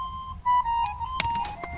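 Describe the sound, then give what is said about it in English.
A short harmonica melody from a video game, played by a character, thin and reedy, in a simple repeating loop at moderate volume, with a few soft clicks near the end and no voices. “Yamato is playing his harmonica. Does it just loop like this?”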